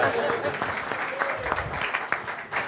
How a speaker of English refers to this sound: Yeah, you can clap. It's okay.